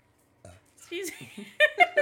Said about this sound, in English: Excuse me. he covered his face. He was like, the shame. a tiny burp. I'm so sorry. I'm drinking.